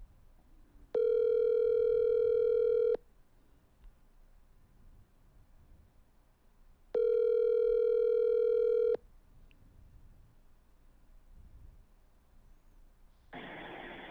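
A phone call to a man ringing on the line: two long, steady electronic ring tones, each about two seconds, spaced several seconds apart over quiet hiss, then a sudden burst of noise at the end.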